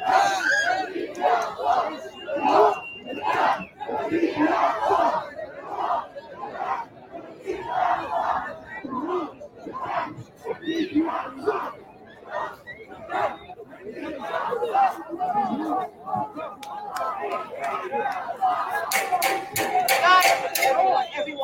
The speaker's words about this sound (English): so many people, I can't count because I can't see the end of the crowd.